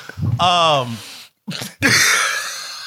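A close, loud coughing fit: a strained, groaning vocal sound, a brief pause, then short harsh bursts and a long raspy, breathy rush of air.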